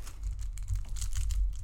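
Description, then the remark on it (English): Plastic wrapper crinkling in a steady stream of crisp, crackly rustles with scattered sharper snaps, fairly loud and continuous for under two seconds, with no voices. “Stop crinkling it. I wasn't crinkling it.”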